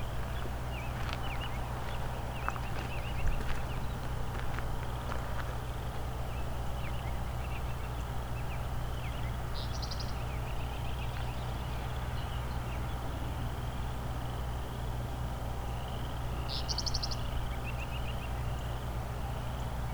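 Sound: meadowlark singing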